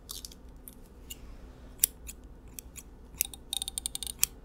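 Scissors snip through a person's hair, combed over to the side, to reach and treat a wound on the head, in quick, irregular bursts of crisp metallic clicks, a faster cluster near the end, over a faint low background hum.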